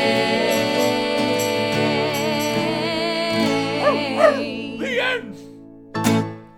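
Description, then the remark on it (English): A few high, sliding dog yips come near the end, followed by one short bark, all over a steady backing of sustained musical tones. “I get to hang out with my dog all day on Dog Day.”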